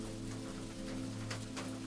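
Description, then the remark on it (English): Steady rain from a storm falls in a continuous, even hiss, with a low persistent hum underneath and a few brief brighter patters of drops. No voices are heard. “Lost in the pages, you read slowly, floating between the prose and the sounds and imagery of the storm.”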